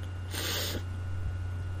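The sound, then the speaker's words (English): A short, breathy yawn: one airy rush of breath lasting under half a second, over a steady low electrical hum, with no talking. “Excuse me, everybody, to yawn.”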